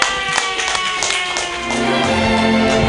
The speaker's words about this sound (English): Cold jamming, everyone. Making people group clap.